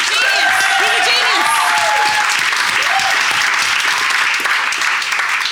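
Loud, sustained applause from a studio audience fills the whole clip, a dense steady clatter of clapping hands with a few cheers and whoops rising above it.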